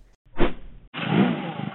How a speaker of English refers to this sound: Come on, start. The engine won't go.